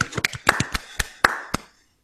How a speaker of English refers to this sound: Clap again, guys.